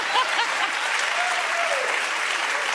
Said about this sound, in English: Listen to all of that applause after what she said. He better offer to pay for the first date, or there will not be a second date.